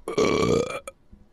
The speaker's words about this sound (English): Are you just over there belching?